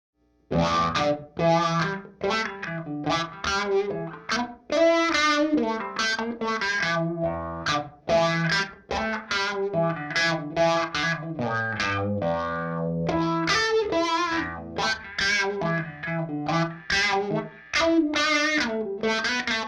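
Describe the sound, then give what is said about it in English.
A wah-wah electric guitar played clean into a Victoria amplifier plays a busy, funky riff throughout, its tone sweeping bright and dark with each pedal rock, slightly driven and wrapped in a short room reverb from a pedal on its room setting, hi-fi mode, with no modulation or diffusion, with no voices. “When I'm playing wah-wah parts, I often like a little bit of space on it, but not like a ton of spring reverb or hall or anything like that, but a room sound just really fattens and opens up the sound.”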